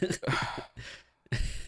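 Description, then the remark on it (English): A breathy, drawn-out yawn, rising in a couple of airy bursts with a short pause before a final exhale; no words are spoken. “I'm giving you gold here, …, and you're yawning at me.”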